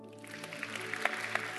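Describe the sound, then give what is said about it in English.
A church audience claps in a soft, dense patter, with a few sharper claps standing out over a steady low hum; no one speaks. “Clap now.”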